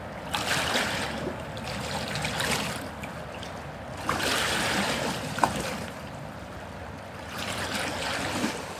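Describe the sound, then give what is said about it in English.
Water flows gently and steadily, a soft continuous rush that swells and eases in slow waves, with no voices present. “Feel into the energy of the water.”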